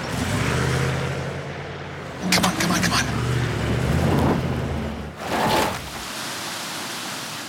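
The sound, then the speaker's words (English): A car engine strains and revs while its wheels churn through icy, slushy water from cascading ice on a steep, unstable mountain road, with two loud splashing surges over a steady rushing wash, until the vehicle gets stuck. A man's voice urges it on under the noise. “One of our vehicles is now stuck in the slushy mess.”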